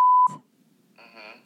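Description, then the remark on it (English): A phone sounds off with a loud steady electronic beep that cuts off abruptly, followed after a short pause by a brighter warbling ring tone of an incoming call, with no talking. “Oh my God, I'm getting a phone call.”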